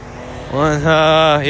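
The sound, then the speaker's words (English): A car drives past outside, its engine a loud, steady droning hum that swells in after a quiet start and lifts slightly in pitch near the end. “some cars going by, apologies.”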